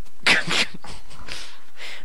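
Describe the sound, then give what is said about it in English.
A dog whimpers and pants: a couple of loud breathy bursts at first, then softer rhythmic huffs of panting with no one talking. “the dog, your dog that was partially yours is now in the mood for love.”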